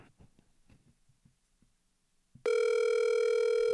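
A phone call rings over a speakerphone held up to a microphone: after a couple of seconds of faint, muffled bumps, a loud, steady electronic ringtone kicks in abruptly and holds to the end.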